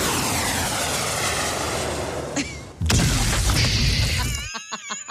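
A roaring jet-engine rumble builds as an airstrike is called in, then a heavy bunker buster bomb explosion bursts in with a loud, broad blast, fading into a few high, wavering whistling tones at the end.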